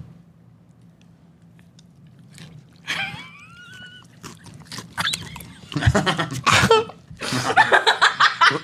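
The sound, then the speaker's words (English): Loud, crackly crunching of potato chips in irregular bursts that grow denser toward the end, preceded by a brief squeaky vocal sound and a few softer rustles. “That's a lot of crunch. You hear that crunch?”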